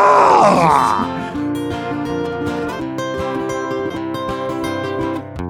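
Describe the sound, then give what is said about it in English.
A voice lets out a short, loud, growling roar in imitation of a dinosaur, lasting about a second before steady, sustained music takes over. “Give me your best dinosaur roar.”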